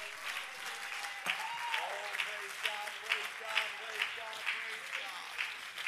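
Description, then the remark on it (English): An audience claps hands steadily all over the building during a preacher's service, a dense, bright patter with occasional sharper claps, while voices call out and cheer over the clapping. “Come on, would you clap your hands all over the building?”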